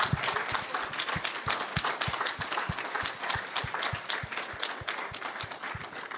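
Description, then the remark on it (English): An audience gives a clap offering of praise to Jesus, many hands clapping in a dense, continuous wash with a faintly regular pulse running through it, sustained at an even level throughout. “I want you to join me to give praise to Jesus as we give a clap offering to Jesus.”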